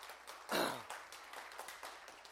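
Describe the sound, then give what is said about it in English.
An audience claps steadily for a group of students for a couple of seconds, a dense patter of many hands, with a brief louder swell near the start that could be a cheer. “I love these students. Give them a round of applause.”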